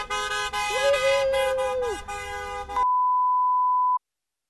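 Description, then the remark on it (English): A car horn blares steadily for a few seconds amid crowd noise, with a brief wavering tone over it, followed by a clean, sustained electronic beep that ends abruptly. “Hey, another honk.”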